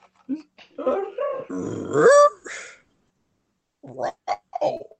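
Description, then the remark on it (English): A person imitates a worried dog growl: a rough, throaty rumble that rises into a whiny pitch, then after a short pause a few more clipped growling grumbles. “I make like a concerned growl.”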